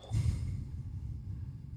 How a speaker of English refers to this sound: I have an upset stomach. That's why I'm breathing like that.